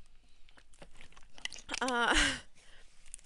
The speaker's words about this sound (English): Sorry, just had to drink some water. Gotta stay hydrated, but yeah, let me continue.